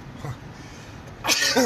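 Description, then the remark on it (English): A single sharp sneeze, blamed on an allergy to Chex Mix, bursts out after a moment of quiet background murmur, loud and abrupt with a breathy, hissing release. “Bless you.”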